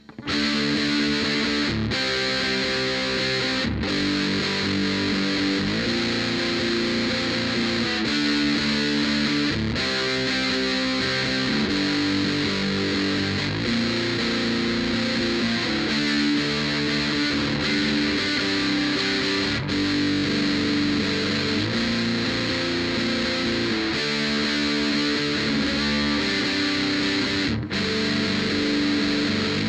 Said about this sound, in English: it actually smacks. It's a little bees in a can-ish. It's really bright, but with humbuckers and a darker sounding amp, I really can't see it sounding too bad at all. I'm a really big fan of it. Just take a listen to the distortion circuit by itself.